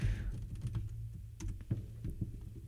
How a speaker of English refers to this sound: Now, if you had to type that into Google. Irish potatoes versus sweet potatoes. All right, here we go. We're typing it into Google.